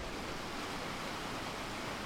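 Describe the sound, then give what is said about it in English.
Steady rushing of the Tiber River flowing below the Ponte Fabricio (Ponte dei Quattro Capi), the oldest standing working bridge in Rome, a continuous broad hiss and churn with no breaks, moderately loud, with no voices. “And we're listening to the water of the Tiber flowing beneath us.”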